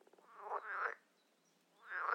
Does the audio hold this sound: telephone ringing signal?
no